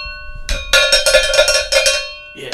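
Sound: cowbell being struck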